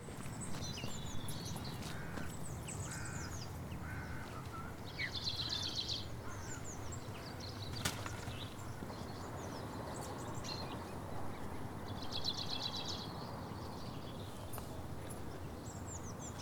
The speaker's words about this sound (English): Anyway, have a quick listen to the bird song. It's absolutely lovely.